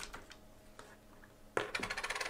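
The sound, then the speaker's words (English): A flipped quarter, tossed to pick between the Colts and the Lions, lands with a sharp metallic clink, then rattles and spins in quick, bright chatters as it settles. A few faint ticks come just before the landing, with no voices. “Heads Colts, tails Lions. Land okay.”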